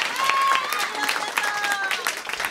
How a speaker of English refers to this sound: And when you all just clapped for Cordelia, I was like, that's also for me.